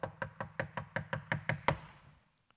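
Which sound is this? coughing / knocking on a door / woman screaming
knocking on a door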